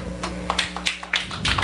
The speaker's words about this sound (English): Very nice golf clap.